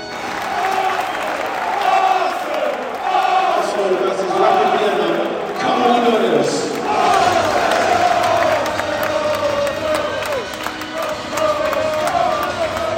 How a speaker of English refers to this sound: I'm shivers down the old back of the spine to be in a crowd and be feeling something communal and people singing together. People are taking loads of footage on their phones.